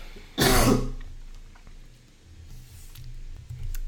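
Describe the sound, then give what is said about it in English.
A single loud, harsh cough bursts out, followed by a few seconds of quiet background noise and faint low rumbling. “Yeah, try not to cough while you give a a presentation, right?”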